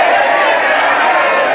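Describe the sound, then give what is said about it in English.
A crowd practising a cheer for Ted Malley on WOR Radio cheers and shouts together in a loud, steady roar of many voices that holds without a break for the whole moment. “All right, somebody lead the cheer.”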